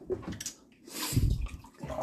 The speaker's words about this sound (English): See, you're dripping. Oh, I know I'm dripping. No, you're dripping water.